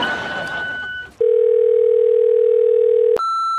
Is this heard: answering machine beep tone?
yes